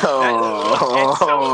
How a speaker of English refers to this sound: I cannot believe this guy snored on me. It's crazy.